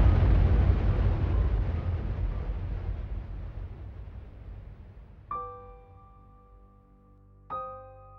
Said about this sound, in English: Suddenly, a whistle from the sky and a huge explosion.